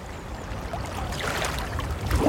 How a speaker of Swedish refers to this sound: så ska se om du kan försöka gissa vad det är för typ av hav vi snackar och vart i Sverige man kan hitta just det här ja, med bruset som jag nu kommer spela upp.